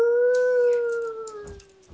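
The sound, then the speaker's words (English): A single long wolf howl holds a steady, slightly wavering tone before sliding downward and fading, loud, with a few faint breathy noises underneath. “Suddenly, 4 dire wolves come up from behind, smelling the spilled blood.”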